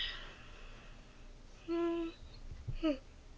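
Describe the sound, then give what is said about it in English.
A person yawns with a sustained, voiced tone that holds steady for about half a second, then ends in a short, quicker sighing sound. Faint background hiss, no talking. “I'm sorry, everyone. I had to yawn.”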